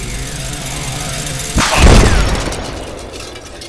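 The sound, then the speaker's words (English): A sharp gunshot-like crack erupts into a rumbling explosion about halfway through, with debris-like clatter trailing off as the blast decays over a steady low background hum. “What was that explosion?”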